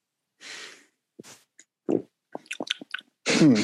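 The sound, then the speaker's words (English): Someone takes a sip of beer from a stein: a breathy inhale, a few small wet slurps, clicks and gulps, then a loud satisfied exhale at the end. No one speaks. “If I could say it tastes like something, it's let me take a sip here.”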